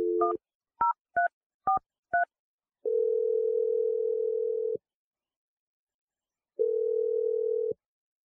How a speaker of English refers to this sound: All right, here we go. I'm dialing the number now.